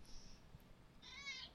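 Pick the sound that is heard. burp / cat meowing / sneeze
cat meowing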